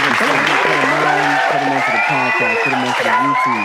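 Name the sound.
audience round of applause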